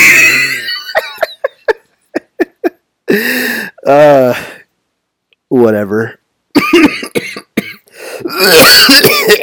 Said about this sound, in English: There you go. There's a good cough for you.